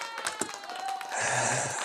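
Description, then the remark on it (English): A short applause sound effect played to welcome a guest: after a second of faint tones and taps, a dense wash of clapping swells in and carries on steadily to the end. No one speaks. “Everybody should have clapping when they come in the room.”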